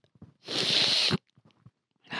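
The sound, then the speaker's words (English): A single loud human sneeze, a harsh burst lasting under a second, with faint breathy sounds and small mouth noises before and after it. “Sneeze town.”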